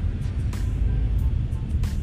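Steady low engine and road rumble from inside a car moving slowly at 30 kilometres per hour on a highway, with a constant hiss of tyres and a few brief whooshing bursts.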